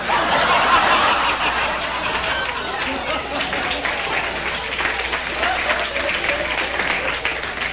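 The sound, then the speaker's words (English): An audience claps steadily in a dense, crackling wash of applause, with bursts of laughter mixed in, sustained at an even loud level for several seconds. “Now, are you applauding laughter or what, is it, friends?”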